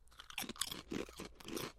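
food or drink, crunching on potato chips

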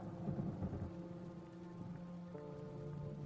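nature, heavy rainstorm

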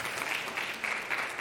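crowd, audience applauding

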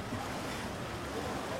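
nature, wind blowing outdoors

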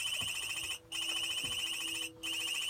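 signal or alarm, satellite phone ringing

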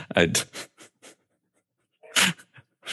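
animal, dog barking

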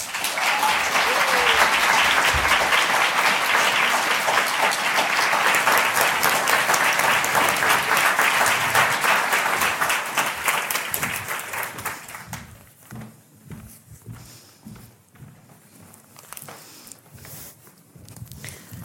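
crowd, audience applause

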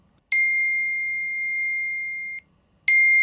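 signal or alarm, mobile phone ringtone

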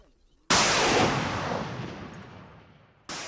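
heavy gunfire

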